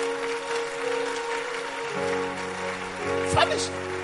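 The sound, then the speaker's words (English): An audience claps in a steady, dense wash of applause, joined by sustained keyboard chords and a voice speaking over it. “Are you clapping? Because the Holy Ghost is coming to help you.”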